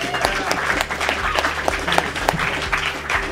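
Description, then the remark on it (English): An audience applauds a panel at the end of a panel discussion, a dense wash of many hands clapping at a strong, even level, with a few sharper individual claps standing out and faint murmuring underneath. “Let's thank our panel one more time.”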